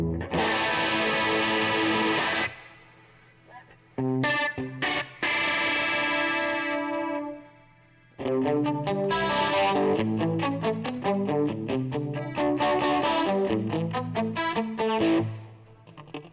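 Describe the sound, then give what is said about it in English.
Electric guitar played through a shimmering chorus effect pedal, without delay, with added reverb. Strummed chords ring out, then a brief pause before a busier run of picked notes and chords. Fairly loud, no voices. “Get some reverb in there.”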